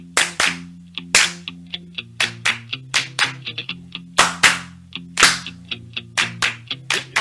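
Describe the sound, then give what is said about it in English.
Sharp hand claps ring out in an uneven rhythm, some loud and others softer, over a steady low humming tone that shifts pitch partway through. “Take a deep breath and get ready to get your clap lesson.”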